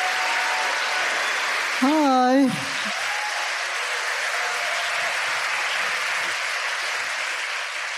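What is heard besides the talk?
audience applause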